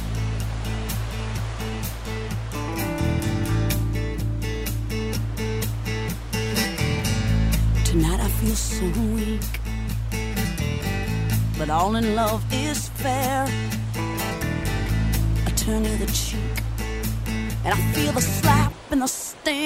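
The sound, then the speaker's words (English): A rock song plays loud and dense, a woman's voice singing over heavy distorted guitars and a steady driving beat, holding full volume until it cuts off abruptly at the end. “This is another drinking water song. This one by ….”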